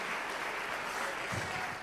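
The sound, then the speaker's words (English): An audience claps their hands to the Lord during a sermon in a steady, dense wash of applause, many hands overlapping into continuous noise with no voices standing out. “Clap your hands to the Lord for just a moment and stand with me if you will.”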